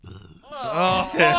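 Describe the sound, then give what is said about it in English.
A loud slurp of Bazooka bubblegum soda from a bottle, drawing in air, that comes out as a throaty, burp-like gurgle lasting about a second and rising in pitch after a soft rumbling start. “Because it's kind of hard to slurp it from the bottle without getting some of that air in there.”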